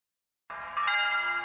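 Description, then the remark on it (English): Bells begin ringing after a brief silence, their rich overlapping tones sustaining steadily, with a second strike adding brightness midway. Fairly loud and resonant, with no voices present. The bells ring in New York City, heard from the roof of the Broadcasting Building, warning people to evacuate as the Martians approach. “The bells you hear are ringing to warn the people to evacuate the city as the Martians approach.”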